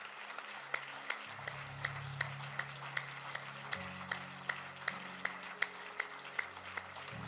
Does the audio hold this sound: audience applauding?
yes